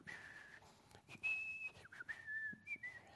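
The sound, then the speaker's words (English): A man whistles a short, wandering tune, the clear notes sliding up and down between held pitches. It's fairly soft with no talking, just a faint background hiss. “Sometimes he'd just be whistling.”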